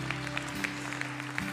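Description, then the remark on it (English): A church audience applauding the Lord after a prayer, a dense, steady wash of many hands clapping at even loudness, with a sustained low keyboard-like tone held underneath. “Yeah, you can applaud the Lord.”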